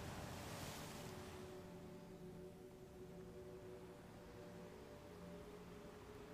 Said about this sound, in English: In your ears, you can hear the flow of the ocean, mirroring your breath.